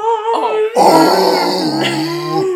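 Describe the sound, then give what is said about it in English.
A person imitates a foghorn with a long, loud, droning vocal blast, a low sustained moan that swells sharply and holds steady for a couple of seconds; it is the green character Angel Marie in a movie. “I love when they are the foghorn.”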